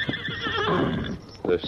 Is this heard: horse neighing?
yes